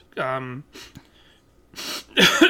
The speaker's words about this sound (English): I'm sorry, I just had a Q-tip up my nose. You have to forgive the coughing and sniffling.